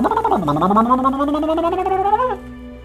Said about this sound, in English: Oh, something's happening. I'm starting to sizzle and fizz again.